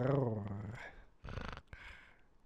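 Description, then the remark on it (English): A person imitates a growl, opening with a low, voiced rumble that breaks into two raspy, breathy bursts. Fairly loud, with no other sounds around it. “Can you do the growl? What's the growl?”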